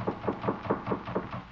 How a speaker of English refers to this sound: Look at this door. Almost off the hinges. Better knock easy.